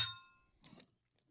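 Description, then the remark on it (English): Two beer glasses clink together once in a toast, a bright ringing tone that fades over half a second, followed by a brief muffled clatter of the glasses being handled. “Well, cheers it up. All right. Cheers.”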